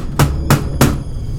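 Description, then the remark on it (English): Three sharp knocks rap on a mausoleum door in a quick, even rhythm, each a solid thud with a hard edge, followed by quiet. “So I went up and I knocked on the thing.”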